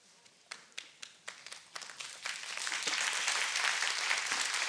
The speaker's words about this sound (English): No, we're going to give God a hand clap. Give God a hand clap for real.